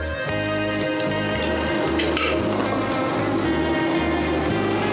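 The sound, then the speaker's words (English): A quickly shaken cocktail of grapefruit syrup and fresh lime juice is poured into a rimmed glass in one steady, continuous splashing stream lasting several seconds, over a low, rhythmic musical bass line. “And pour it in the glass.”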